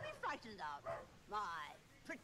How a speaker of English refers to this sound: There's Buster barking at y'all.